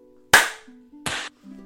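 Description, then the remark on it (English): Two sharp hand claps, made to sync a recording, about three-quarters of a second apart, each a loud, crisp snap with a short ringing tail, over a faint low hum and no talking. “We're doing a clap?”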